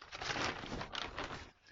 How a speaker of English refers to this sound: Yeah, sorry if this bag is rustling quite a lot. A little bit of Foley for you there, guys.